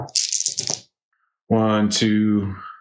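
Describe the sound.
Dice clatter and rattle briefly for under a second, then after a short pause a person's voice follows with a drawn-out wordless utterance.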